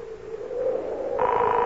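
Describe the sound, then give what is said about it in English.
A telephone ringing over the line on a call placed from a payphone: a steady electronic tone hums, then a brighter, higher ring tone cuts in for the final half second. No one speaks. “Ah, it's ringing.”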